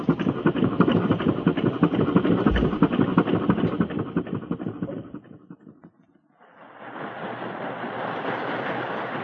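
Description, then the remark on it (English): A heavy riverboat engine chugs with a steady, rapid pulsing rhythm as the boat departs, fades briefly, then returns as a broader, rushing mechanical drone, fairly loud with no voices. “Her face was flushed with excitement as the two boats moved along side by side.”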